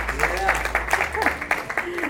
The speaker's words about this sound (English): Come on, let's put our hands together and give him a good hand clap of praise.